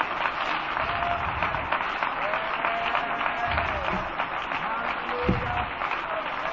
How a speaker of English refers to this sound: Let's clap our hands right now to the Lord.